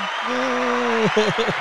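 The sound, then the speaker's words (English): A burst of audience applause fills the short moment, steady, with a voice talking or calling out over the clapping. “How about applause”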